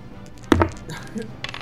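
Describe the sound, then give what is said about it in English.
Damage dice for an unarmed strike are rolled, hitting a hard surface with one sharp clatter, then tumbling in a few lighter, quieter clicks before settling on a three and a four, totalling seven. Faint murmuring sits underneath. “So go ahead and roll your damage dice for your unarmed strike.”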